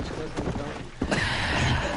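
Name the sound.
horse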